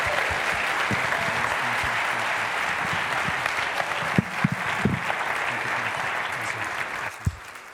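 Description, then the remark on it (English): A church audience applauds God steadily, a dense wash of clapping from many hands, with a few louder individual claps and faint voices scattered through before it tapers near the end. “If you're a child of God, give him a clap.”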